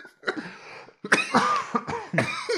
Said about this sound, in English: Cough.